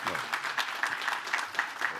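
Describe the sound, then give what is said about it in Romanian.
A crowd applauds steadily for people just elected by vote, a dense wash of many hands clapping at a moderate, even level with no voices standing out. “Am vrea să-i aplaudăm și să zicem Domnul să-i binecuvinteze.”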